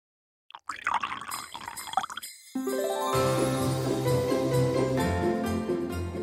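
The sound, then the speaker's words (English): Liquid is poured into a cup, a splashing trickle that becomes a steady, rising fill, with the pitch climbing as the vessel fills over several seconds. “Here, have a seat. Let me pour you a cup of cheer.”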